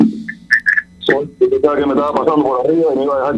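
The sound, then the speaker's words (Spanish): A few short electronic beeps, then a continuous radio broadcast voice from a caller's radio coming back over the phone line into the La Poderosa call-in show as a muffled, echoing copy, steady and fairly loud. “Oye, no te oigo bien, baja el radio porque tengo eco.”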